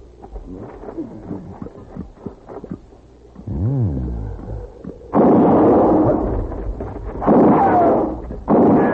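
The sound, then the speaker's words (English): A low rumble gives way to a sudden, loud blast of gunfire that roars on for a couple of seconds, followed by two more abrupt bursts. “Answer me or I'll shoot again.”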